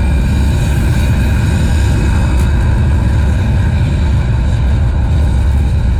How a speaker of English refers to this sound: We have main engine start. 5, 4, 3, 2, 1. Liftoff.